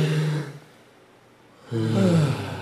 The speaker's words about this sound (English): Okay, before we get into this next city, why don't we take one last deep breath in, hold exhale. Ready? One, two, three.